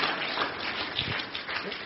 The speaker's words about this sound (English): That's a good place to clap now.